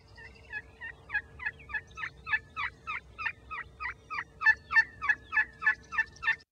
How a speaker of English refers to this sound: This is my favorite, I think. Second favorite. This is an assembly call to gather young turkeys or other members of the turkey clan.